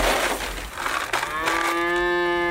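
A cow on a farm with goats, chickens and cows moos loudly, a long drawn-out low call with a rising, harmonic tone that swells in the second half, over some rustling background noise.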